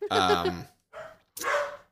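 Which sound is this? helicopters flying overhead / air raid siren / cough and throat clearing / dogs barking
dogs barking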